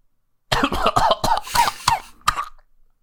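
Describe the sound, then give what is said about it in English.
A voice acts out a harsh, sputtering fit of coughing as if a woman is coughing up blood: a rapid run of five or six loud bursts, a short pause, then one last cough. “And she coughs blood out.”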